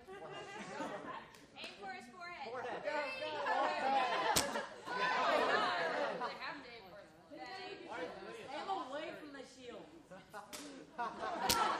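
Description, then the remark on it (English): A few sharp, isolated thwacks of arrows striking a paper shield, spaced several seconds apart, one arrow hitting a person's hand, cutting through steady lively chatter and occasional chuckles from a group. “Oh, that one hit your hand. Your hand was a better shield than the paper.”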